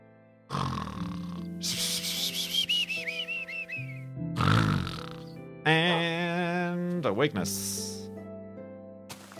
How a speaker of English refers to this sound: Let's, hello? Oh, it's a pig.